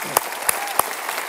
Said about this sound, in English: I want to just give an acknowledgement, I want to give an acknowledgement of appreciation applause to our senior pastor